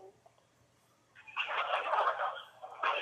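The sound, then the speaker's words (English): A phone rings loudly, a warbling electronic tone that sounds for over a second, breaks off briefly, then starts again. “The phone keeps ringing.”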